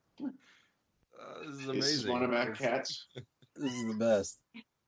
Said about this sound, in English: This is one of our cats.